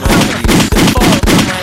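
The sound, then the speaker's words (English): Loud, rapid bursts of gunfire crack in a steady rhythm, roughly every half second, with each shot's dense boom blending into a harsh, continuous wash; no voices accompany it. “my gunshots are really adding to this.”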